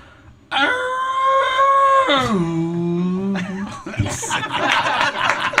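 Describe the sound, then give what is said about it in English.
Someone imitates Godzilla's roar: one loud, drawn-out bellowing cry lasting about three seconds that lurches down in pitch midway, followed by laughter and noisy reactions. “I'm going to do Godzilla.”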